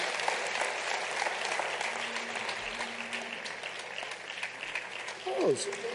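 An audience applauds steadily, a dense wash of many hands clapping throughout. A faint hum lingers underneath, and a brief falling tone sweeps down near the end.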